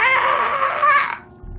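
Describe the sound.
A voice imitates an unholy wail: drawn-out, high, wavering, harsh and loud, holding for about a second before cutting off abruptly into quiet.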